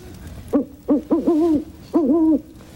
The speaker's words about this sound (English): What's that? Just an owl.